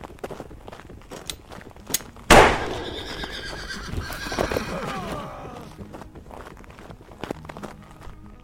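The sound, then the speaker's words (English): A horse rattled by a gunshot rears back and lets out a loud, shrill whinny that rises sharply and trails off over a few seconds, with hooves clopping and shuffling before and after. “Soon as one of them was at shooting distance, I fired a bullet, rattled the horses up, got one to rear back and kick off their rider with the first shot.”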